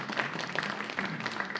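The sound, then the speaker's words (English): An audience applauds a man who has just read a passage from Galatians: a dense and steady patter of many hands clapping at moderate volume throughout, with no voices standing out. “Yes, please do give him a round of applause because that was a lot to get through.”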